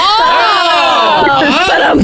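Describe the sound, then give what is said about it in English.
A loud crowd cheers and whoops in response to a joke about project managers changing a light bulb, many voices shouting together in a sustained, high-pitched wave of excitement that holds steady for about two seconds. “Good response here. Yeah. What a crowd.”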